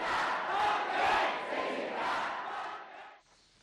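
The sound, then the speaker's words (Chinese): A large crowd at a protest rally in Hong Kong roars in a dense, continuous wash of shouting voices, swelling and ebbing slightly, then dropping off sharply near the end to a faint murmur. “那么我们继续来为您解说现在正在发生在香港的一些这个抗议集会的场面。”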